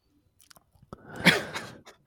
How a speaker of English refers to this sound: You know what, guys? It's the thank you guys. It's the wet mouth noises.